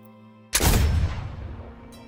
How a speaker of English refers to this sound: Hear the sound of a gunshot go off.